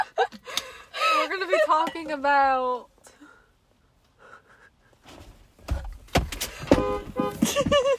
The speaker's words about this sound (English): Oh, guys, we're sitting in a car right now.